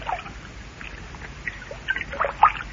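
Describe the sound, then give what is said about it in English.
Water sloshes and trickles as someone steps into a filled bathtub, with a few soft splashes growing slightly louder near the end. No one speaks. “Now step in. I'll help you. Take care. The water may be hot, and the tub may be slippery.”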